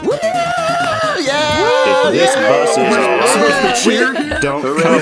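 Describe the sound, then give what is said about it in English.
A crowd of people gathered for a trivia event chattering at once, many overlapping voices forming a steady, loud babble with no single speaker standing out, sustained for the whole few seconds. “We have an actual crowd.”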